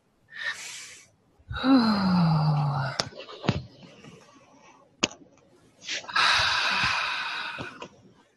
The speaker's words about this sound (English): All right, back to our breathing. Nice deep breaths in through the nose and out through the mouth, please.